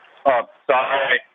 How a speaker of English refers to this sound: We're losing you a little bit on the cell phone here. Can you hear us still?